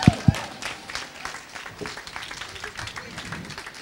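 An audience breaks into applause, a dense, steady crackle of many hands clapping at once that holds at an even level for several seconds, with a couple of brief low thumps at the very start.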